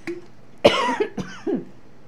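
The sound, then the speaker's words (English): A person coughs twice in quick succession, sharp, each burst trailing off into a rough, voiced exhale, with no talking. “And I am going to have a bit of a cough here.”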